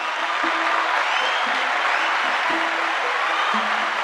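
A crowd applauds steadily, a dense wash of clapping hands that stays loud and even throughout, with a low tone pulsing faintly underneath about once per second.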